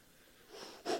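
A heavy, controlled Lamaze-style breath: a soft breathy rush swells, then ends in one sharp, forceful puff of air. No talking, just the breathing.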